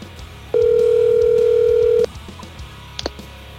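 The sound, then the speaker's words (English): A single loud, steady electronic ringback tone lasts about a second and a half over a phone line as the Guru Show's phone system calls a guest, then cuts off, leaving faint line noise and a couple of small clicks. “The ring sounds great.”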